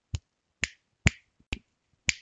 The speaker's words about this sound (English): So that's me clicking my fingers if you couldn't tell, and yeah, it was just a lot of that because that's like Sephiroth's. Like neutral move, I think, is he just clicks his fingers and then dark aura spills out from him like for a split second.